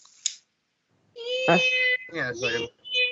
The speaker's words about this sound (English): Oh, shut up, cat! Jesus Christ! Oh, don't yell at your cat, the one you were crying about leaving you.